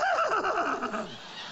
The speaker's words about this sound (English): He said, what do you think that is, Adam? Adam's a speaking spirit. He said, that's a horse.